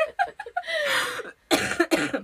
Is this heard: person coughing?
yes